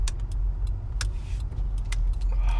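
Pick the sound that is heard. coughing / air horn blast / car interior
car interior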